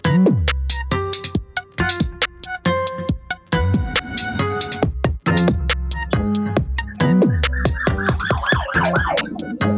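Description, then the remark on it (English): An emergency vehicle siren passing by a house wails with rising and falling sweeps, growing clearer toward the end, layered over a loud, steady thumping music beat; no one speaks. “Yo, sorry, siren just came by my house.”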